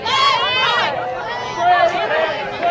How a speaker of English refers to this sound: This has been a very boisterous crowd tonight, hasn't it? Well, it's rivalries, you know. Yep. I just can't tell who's who. They haven't liked anything the umpires call.